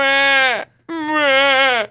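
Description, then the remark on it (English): A man's voice imitates a wailing baby in two loud, drawn-out cries with a brief gap between them, each a high, strained wail with a bleating, calf-like quality that trails off at the end. “He's got that cry down pretty good.”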